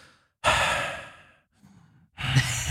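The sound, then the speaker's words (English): A person imitates the heavy breathing of people falling asleep, with two long, loud, breathy exhales separated by a quieter pause. “Lots of just heavy breathing.”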